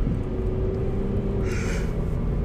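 A big, drawn-out yawn: a long, steady low voiced tone that sags slightly in pitch, ending in a short breathy exhale, all over a constant low rumble.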